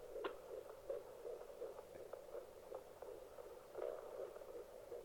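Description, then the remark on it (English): A quiet, steady electronic hum with a fast, regular pulsing running through it, the heartbeat of a little LFA baby picked up on a monitor, continuing evenly throughout with no voices. “You hear that? That's the heartbeat of a little LFA baby.”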